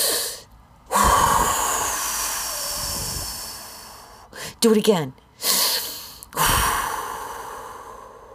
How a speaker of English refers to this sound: Breathe deep. Suck in a big gulp of air and blow it out like you're blowing out 50-something candles on your birthday cake. You ready? In.